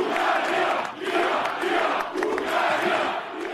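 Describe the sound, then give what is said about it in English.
A large crowd of supporters of Hungarian Prime Minister Viktor Orban cheers and roars continuously as he declares his landslide general election victory, the noise swelling in rhythmic waves roughly every second, like chanting or rallying shouts from many voices at once, loud throughout. “He declared his landslide victory in front of a crowd of cheering supporters.”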